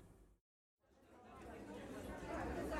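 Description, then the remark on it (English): Crowd chatter fills a theater lobby as the audience waits for Raven the musical to begin: after a brief silent gap, many overlapping voices murmur and build steadily louder into a dense, indistinct babble. “Inside the theater lobby, the Nazis Nazi-ishly wait for Raven the musical to begin, unaware that the Blackbird has caught them in his birdie mandibles.”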